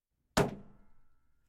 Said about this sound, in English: The wolf knocked again, and then walked in and shut the door.